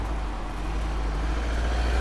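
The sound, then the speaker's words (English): A London black cab rumbles close by a motorcycle in traffic, its deep engine drone steady and loud for the whole two seconds, building very slightly toward the end, with no voices. “Except when the black cabs get that close.”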